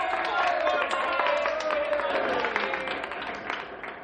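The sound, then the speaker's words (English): An audience applauds the nomination of two young men for mayor, a dense, crackling wash of many hands clapping mixed with a murmur of crowd voices, holding steady and then gradually fading over about four seconds. “Now that the two top candidates have been named, please wait until I finish naming the other young people before applauding.”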